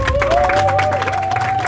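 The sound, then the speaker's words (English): A Gospel of Christ Church audience claps together for a newcomer in a dense, steady burst of applause, loud and continuous, with a sustained wavering musical tone running underneath. “Oh, church, you can clap for her.”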